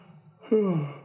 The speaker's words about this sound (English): All right. Well, I'm starting to yawn. A lot.